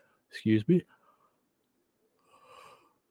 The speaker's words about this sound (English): I had to yawn there.